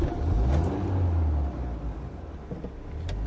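A car engine revs up with a deep, rising rumble, then settles into a steady drone as the vehicle pulls away, loud, with no voices.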